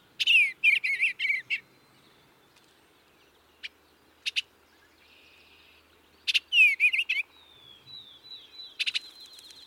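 bird, bluebird song

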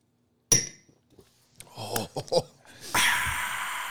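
household object, shot glasses clinking

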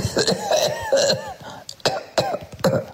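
human body sound, person coughing

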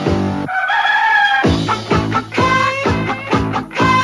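bird, chicken crowing

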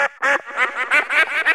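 bird, duck quacking

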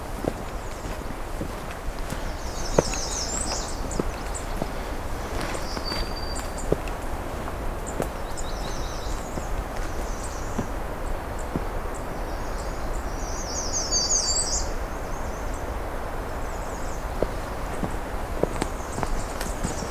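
bird, black-throated green warbler singing

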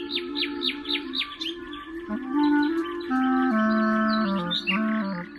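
bird, nightingale song

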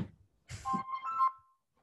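signal or alarm, flip phone ringing

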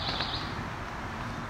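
bird, pine warbler singing

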